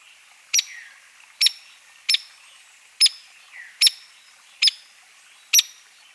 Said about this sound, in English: Hairy woodpeckers also have a sharp peak that is similar to downy woodpecker. Here's the downy. And the hairy.